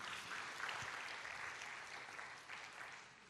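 A crowd claps steadily, a dense patter of many hands filling the room at moderate volume and slowly fading toward the end, with no voices standing out.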